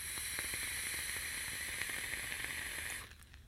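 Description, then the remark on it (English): A steady sizzling hiss with faint crackles runs for about three seconds, then cuts off abruptly, as the Breeze Tones coils fire during a long direct-lung inhale on a Tripod 2 RTA with a 4mm restricted airflow, on a single 18650 device with 6mg peach e-liquid. No one speaks. “I'm getting some crackle from the Breeze Tones coils on the inside.”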